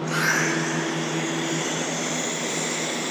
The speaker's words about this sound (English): So we reset the software and we put it in standby. That turns on two exhaust fans up in the corners. Oh, that's going to exhaust any excess gas.